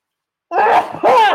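A loud sneeze in two sharp bursts, a brief voiced intake followed by an explosive choo, after a moment of silence.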